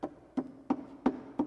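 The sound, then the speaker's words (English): Five steady hammer blows strike a nail into a wooden baseball bat, evenly spaced about a third of a second apart, each a sharp knock with a short woody ring, fairly soft, with no talking. “Hold the nail. There you go. There you go. All right, hammer that in.”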